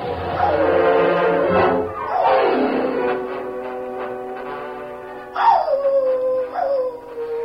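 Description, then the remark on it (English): Tin Cup's dog howls in long, drawn-out cries that rise and slide downward, one howl flowing into the next with a few breaks, loud, with no talking. “We didn't get his dog, though. Listen.”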